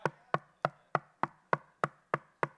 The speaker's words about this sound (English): You know why? Because he stands at the door and he knocks. He's that irritating salesperson that's at the door and he's like this.